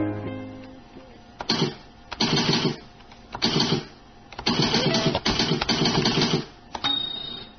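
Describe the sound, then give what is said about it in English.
A manual typewriter clatters in rapid bursts of sharp keystrokes, with short pauses between runs and the occasional heavier single clack. Loud and steady, with no voices. “Remember that sound? I entered Mrs. Nance's seventh grade typing class in 1954 at the Texas School for the Blind.”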